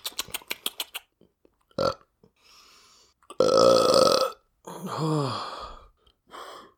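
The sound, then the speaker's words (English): A few quick clicks, then a long, loud, rasping burp, followed by a drawn-out groaning exhale that falls in pitch and a brief final grunt. “Oh, not a burp.”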